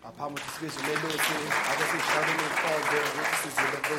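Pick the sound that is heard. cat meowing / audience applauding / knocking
audience applauding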